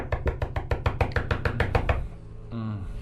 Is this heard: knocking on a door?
yes